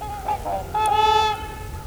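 Trumpeter swans call with brassy, horn-like honks: a few short notes, then a longer sustained call, loud over a low rumble of background noise.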